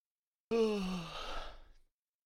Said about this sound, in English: Already yawning, ladies and gentlemen. Yawning, and we're only 19 minutes into the film.